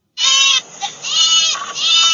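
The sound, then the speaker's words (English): A goat bleats loudly in a long, wavering, nasal call that breaks briefly then resumes, with no talking. “That's my sign for a transition.”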